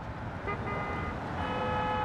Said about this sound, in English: If you place yourself on any street in Manhattan, there's always this underlying whoosh of traffic, which if you are sensitive to sound, you'll probably pick up on pretty quickly.